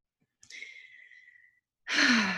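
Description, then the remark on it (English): A long, airy inhale during a breathing exercise is followed by a brief pause and then a louder, fuller exhale with a slight voiced sigh, with no talking. “So now after we've taken a few breaths, go ahead and come back to the body.”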